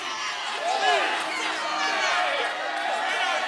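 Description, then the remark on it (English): A large crowd at a public meeting claps steadily as Kevin stands and walks out, a dense, continuous wash of sound with many voices shouting and cheering over the applause, loud and sustained throughout. “Finally, Kevin stands and walks out. The crowd begins to clap.”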